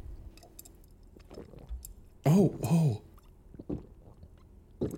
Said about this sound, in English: Here, I'll do like the couple gulps. That will get it through. Sorry if any of you hate this.